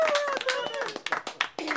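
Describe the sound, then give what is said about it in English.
A few people in a radio studio with no studio audience clap in quick, uneven bursts while voices talk over them, wrapping up the first set of the Local Live broadcast; the sharp hand slaps mix with steady speech at a moderate level. “Okay, we don't have a studio audience, but it's time to clap.”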